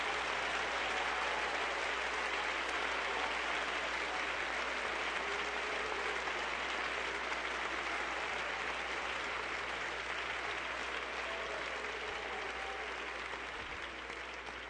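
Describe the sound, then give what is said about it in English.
A large church audience claps steadily for about fifteen seconds in praise to the Lord, a dense, continuous wash of applause at an even loudness, with faint cheers or voices mixed in beneath it. “Give the Lord another hand clap of praise.”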